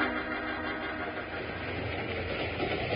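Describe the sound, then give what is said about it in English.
A train rumbles steadily along, a dense, low mechanical churn with a faint metallic rattle, laboring as it slows while climbing up Broken Wheel Grade. Continuous, with no voices. “So when the train began to near Broken Wheel Grade, he called for the next move.”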